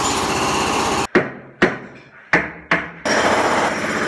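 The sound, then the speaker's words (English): Construction hammering by construction workers in the city, on both sides of an apartment: four loud, sharp metallic blows at an uneven pace, each ringing briefly, set between bursts of a steady, harsh machine roar at the start and end. “Construction workers all over the city.”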